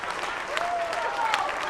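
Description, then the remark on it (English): A crowd clapping for the word of God, a dense wash of many hands clapping at once with no pauses, fairly loud and even throughout, with a faint tonal whistle-like sweep rising through the noise. “You better clap for the word.”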